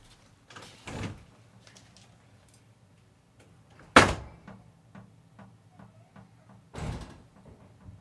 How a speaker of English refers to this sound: I feel like he's like slamming every single door. I feel like he was finding doors to slam. It's like just slamming them.